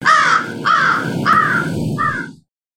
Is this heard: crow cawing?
yes